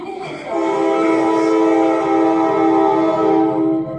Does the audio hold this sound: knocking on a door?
no